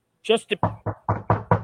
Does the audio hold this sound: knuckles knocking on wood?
yes